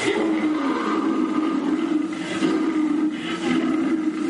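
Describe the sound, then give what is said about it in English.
An African lion roars in the distance in one long, sustained, rumbling growl that stays loud and steady for several seconds, with no voices over it. “Off in the distance comes the fierce roar of an African lion.”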